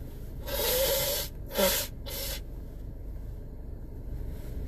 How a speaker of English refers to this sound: Sorry, folks, you're also getting my morning nose blow because I had to blow my nose a lot because fuck, deviated septums.